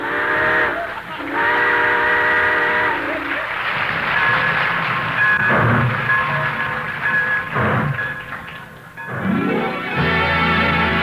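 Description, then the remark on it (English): A steam train pulls away as a radio music program signs off: loud, sustained whistle blasts with rich harmonic tones, followed by bursts of hissing steam and a low chugging rumble that builds as it gets moving. “All aboard! Well, looks as though we're ready to pull out”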